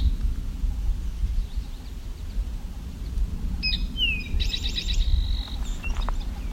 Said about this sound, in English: Song sparrow here too.